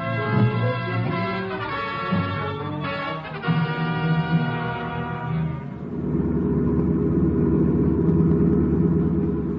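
A car engine revs loudly, its pitch rising and shifting as it pulls away out in front, then settles into a steady, heavy rumble of driving. No voices.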